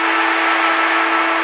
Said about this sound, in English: And the siren sounds and signals an outstanding Hawthorn victory here at the MCG.